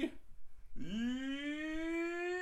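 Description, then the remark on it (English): A dog lets out a long, drawn-out whimpering whine that starts low, rises in pitch and then holds steady. It is fairly loud, with no talking over it. “With me, as always, are the dogs.”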